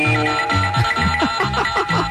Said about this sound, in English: I also had an alarm clock with a recording of CBS News Sounders from the 60s. So this was going on.